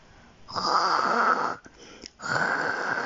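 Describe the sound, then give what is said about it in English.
Two loud, rasping snores, each a long breathy rattle, separated by a brief quiet pause as breath is drawn in; Goldilocks snoring in the story of the three bears. “Oh no, Goldilocks had started snoring.”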